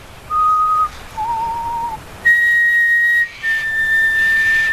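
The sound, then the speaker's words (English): Someone whistles an imitation of a chorus of pied butcherbirds heard along a huge river system: four drawn-out, steady notes, two lower tones followed by two brighter, higher ones, separated by brief gaps, with no talking. “Except it was a chorus, so it was like a round, and it was going round and round and round by all these birds.”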